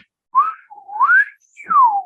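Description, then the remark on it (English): Whistled speech: a single whistle forms three syllable-like bursts with rising and falling pitch glides and short gaps between them, pronouncing the consonants and vowels of words while whistling. There is no ordinary talking. “and then if you blow more doing a bit of the whistle, you would go to whistled speech, which is.”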